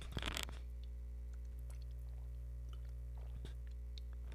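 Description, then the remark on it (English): A brief slurping sip of LaCroix sparkling water from a can at the start, then faint scattered crackles and ticks over a steady low electrical hum, with no talking. “I'll drink another sip of LaCroix.”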